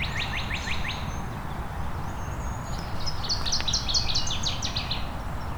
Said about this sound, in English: And there's our northern water thrush, which is a type of warbler, not a type of thrush.